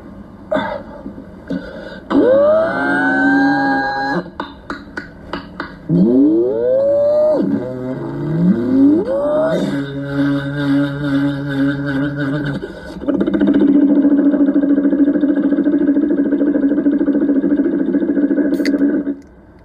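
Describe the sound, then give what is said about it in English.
A voice imitates a helicopter, rising pitch sweeps and choppy bursts building into a loud, steady droning whine that holds to the end, with no talking. “Average helicopter.”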